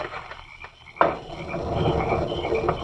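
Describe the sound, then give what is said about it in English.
A door shuts with one sharp, solid thud, followed by a steady, low, rumbling background murmur with faint croaking textures. No one speaks. “Now close the door, Gito.”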